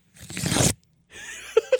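Paper rips apart in two noisy bursts: a long crackling tear followed by a second, rougher rip that ends in a couple of sharp snaps. Nobody speaks.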